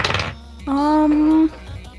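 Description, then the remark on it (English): A quick rattle of dice clattering across a tabletop opens the moment, followed by a voice holding a steady hummed note for about a second. “Roll for it. Yes, I shall.”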